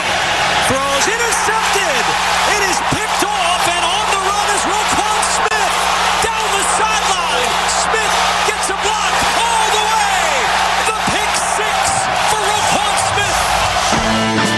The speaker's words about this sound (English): Crowd trying to make it more difficult now.